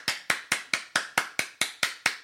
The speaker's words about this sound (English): You told me to clap for you. Did I? I was doing a callback to earlier on, and I said I'd get you at some point with a clap.